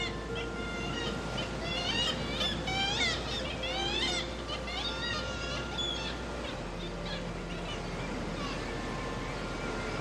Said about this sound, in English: and quite often you hear the reverberation, the coloration of the sound reflecting back off these vertical black rocks. And they have quite a plaintive character to the voices. Kittiwakes, onomatopoeic, because they say kittiwake, kittiwake.